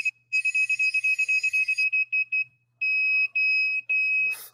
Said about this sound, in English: Ready? Oh, why is it beeping now? What?